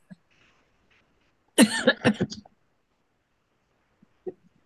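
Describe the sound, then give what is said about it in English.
A short burst of coughing, several rapid harsh coughs run together over about a second, surrounded by near silence with a faint small noise afterward. “Get a cough drop.”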